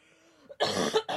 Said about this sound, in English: He's speaking through you right now by giving you a coughing fit.